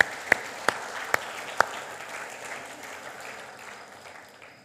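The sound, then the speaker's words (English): An audience applauds to honor guests who shared, with four loud, sharp claps standing out in the first two seconds over a steady wash of clapping that slowly tapers off. “And I'd love us to honor them with a round of applause.”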